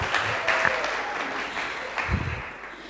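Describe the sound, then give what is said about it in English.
A crowd applauds steadily for a few seconds, a dense wash of many hands clapping at once with no voices over it, holding at a fairly even loudness throughout. “We don't actually applaud people here.”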